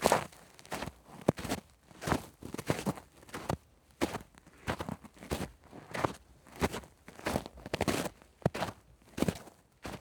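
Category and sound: nature, footsteps walking through snow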